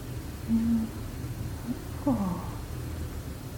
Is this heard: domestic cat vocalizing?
yes